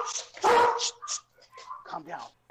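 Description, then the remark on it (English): A big dog lets out one loud bark at someone at the door, followed by several shorter, quieter yips and whines over about two seconds, with voices mixed in. “All right, now that we're back from our dog intermission.”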